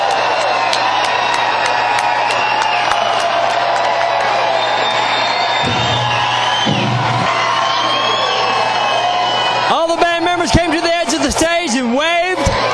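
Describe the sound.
A concert crowd roars steadily after the band closes its set and leaves the stage, with clapping and scattered whistles, building toward the end into loud, excited whoops and yells from many voices at once.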